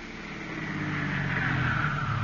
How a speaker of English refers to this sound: Isn't that a car coming up the drive now?